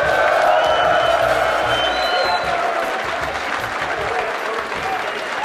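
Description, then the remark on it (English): A live studio audience at a Kappa Alpha Convention of Leadership and Character in Dallas, Texas, applauds steadily with dense, continuous clapping, mixed with scattered cheers and whoops, staying loud throughout before easing slightly toward the end. “That's great love from the crowd, and we have our guest with us,”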